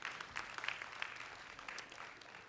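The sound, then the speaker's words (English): A church audience claps steadily, many hands blending into a dense, even patter of applause that holds at a moderate level for a few seconds. “That's worth a clap.”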